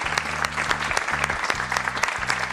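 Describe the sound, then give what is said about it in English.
Sustained recorded applause from a crowd, about 16 seconds long, dense and continuous with sharp scattered claps throughout, steady and fairly loud over the full stretch with no voices standing out. “It's the long, it's the long clap. Really long clap, that.”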